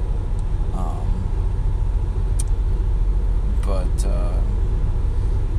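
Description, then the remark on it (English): A car drives steadily along the road with hands-off driving engaged at the press of a button, its engine and tire rumble forming a constant low roar, with a faint, indistinct voice and a few brief clicks passing over it. “We're having a good drive so far.”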